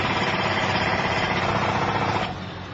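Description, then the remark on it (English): A loud, dense mechanical rattle like a pneumatic drill hammering steadily, with the noise easing off slightly near the end. “Louder than a pneumatic drill.”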